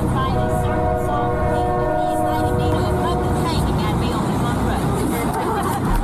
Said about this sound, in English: Now, this audio was hard to hear because a train was coming, but she said it.